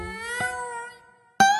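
Cats meowing on the roof of a house: a long, drawn-out wailing meow that gradually fades, then another loud meow bursts in abruptly right after a brief pause.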